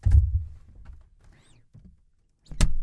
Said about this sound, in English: Comedy, open of the door and closing again.